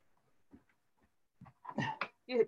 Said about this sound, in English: Just had the dog in. It must have just wagged its tail and knocked it out.